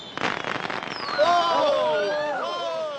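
sound effect, fireworks exploding

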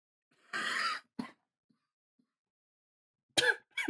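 human body sound, coughing

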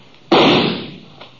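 sound effect, gunshots

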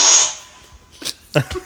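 human body sound, fart

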